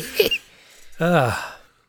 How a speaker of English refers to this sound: excuse me. I'm not sick. I just have this cough.